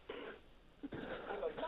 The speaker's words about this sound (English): You've got an echo